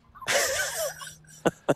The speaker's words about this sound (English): I don't know who's coughing.